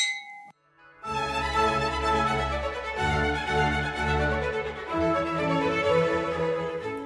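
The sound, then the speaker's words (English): A single bright clink of glasses rings out briefly at the start, then a short pause before full, sustained music swells in and carries on to the end. “Cheers.”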